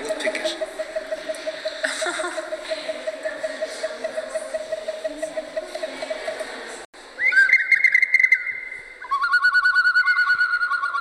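Whistling bottles with water in them sound bird-like calls: a steady, softly pulsing whistle, then after a brief pause, brighter, higher wavering whistles that shift pitch and carry on to the end, clear.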